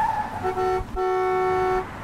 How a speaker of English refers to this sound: We're on the street in a typical North American city at a spot where cars and bikes and pedestrians converge, and things don't always go smoothly.